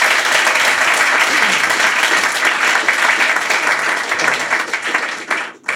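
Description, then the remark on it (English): A crowd applauds loudly and steadily, a dense wash of many hands clapping at once that holds for several seconds before tapering off abruptly at the end. “But again, a huge round of applause for these guys.”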